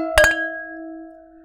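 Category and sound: household object, wine glasses clinking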